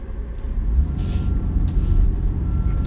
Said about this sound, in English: Sorry, I was turning. There's a giant dump truck coming my way, and you didn't know how to use a blinker.